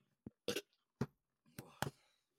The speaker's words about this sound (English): Ooh, that one sounded wet, bud. You good? Excuse me. No, it was just a weird burp. That was some of that chicken from earlier.